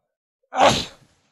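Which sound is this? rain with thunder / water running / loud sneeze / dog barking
loud sneeze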